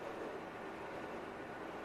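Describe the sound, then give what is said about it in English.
A train lurching into motion, heard as a steady, continuous rumble and hiss of rolling noise, fairly loud, with no voices over it. “The train lurched into motion, pushing off in the opposite direction than the one we came from, I think.”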